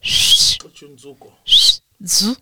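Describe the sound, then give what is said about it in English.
A person whistles twice in short, breathy, airy bursts as part of pronouncing a Sitsonga name, with a brief murmured vocal sound between them. The pattern repeats in a quick sequence. “You have to whistle 2 times in that name.”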